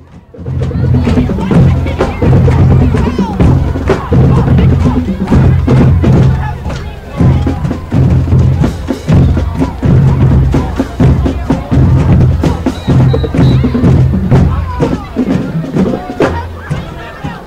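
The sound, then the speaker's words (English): A marching band drum line pounds out a steady, driving cadence of sharp hits and deep thuds in the rain during the Saugatuck vs Saranac football game, loud throughout, with a low murmur of crowd noise underneath. “As the drum line's getting after it still despite the rain, so let's listen to them for a minute.”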